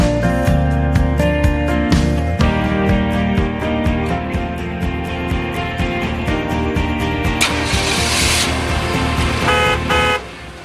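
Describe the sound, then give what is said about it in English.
A loud car horn honks repeatedly over a rumbling engine, layered with a steady rhythmic beat throughout the whole stretch, with no talking. “The sound effect for the 10-minute tour. That's right. Get in your cars.”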